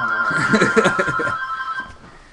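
A home phone ringtone plays steadily for a couple of seconds, its bright sustained tone fading toward the end, with muffled voices and laughter underneath.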